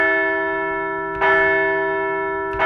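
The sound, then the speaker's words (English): A large, resonant bell rings loudly, struck twice about a second and a half apart, each clang swelling into a long, humming sustain with no voices; rung to celebrate the Phillies' Thursday 6-2 win wrapping up a series victory over the Washington Nationals. “So let's ring the bell for a Thursday win to wrap up a series victory against the Washington Nats.”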